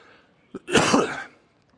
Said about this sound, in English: Could I convince somebody to get me some water, or I'm going to be coughing like crazy?